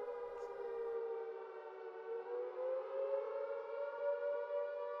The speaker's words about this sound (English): The siren should scare you. I looked in the newspaper archive to find stories of people being scared and startled by the siren during the war, and I found plenty.